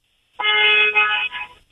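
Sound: car horn honking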